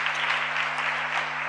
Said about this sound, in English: Let's give a clap offering for men in Jesus' name.